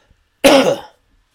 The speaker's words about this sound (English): Excuse me, I have to cough.